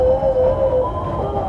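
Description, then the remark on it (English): An ice cream truck sound effect: a tinny, sustained musical tone sounds steadily, shifting pitch partway through, over a low, noisy rumble with no talking. “If they get really far away, you're going to hear ice cream truck sound effect.”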